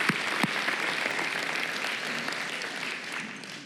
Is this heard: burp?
no